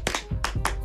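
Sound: hand clap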